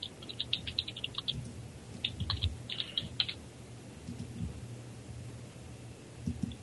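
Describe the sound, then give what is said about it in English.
Rapid clicking of computer keyboard keys in short irregular bursts, fairly quiet, with brief pauses between flurries over a low background hum. “just give me a moment, I'm typing something.”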